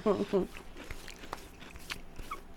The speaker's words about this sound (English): As I crunch into the microphone. You're very welcome. Oh my God, this popcorn. I need a case of that.